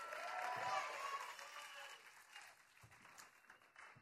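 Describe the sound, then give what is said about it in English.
An audience at a show claps for a departing guest in a dense, steady burst of applause that holds strong for a couple of seconds, then thins out and tapers off, with faint crowd noise underneath. “Everybody clap it up.”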